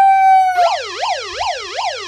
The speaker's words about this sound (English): That siren is the worst part about that.